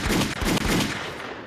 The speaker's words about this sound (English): Gunshots for the one time. DJ, please.